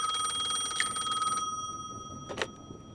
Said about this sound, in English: At that very moment, the phone rang.